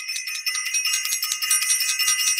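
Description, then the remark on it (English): A bright, high-pitched bell rings continuously for a couple of seconds, its tone pulsing rapidly as if shaken or struck in quick succession, fairly loud with no voices. “I want to ring the bell and I want to send love out to Self-Invested, the whole Self-Invested family.”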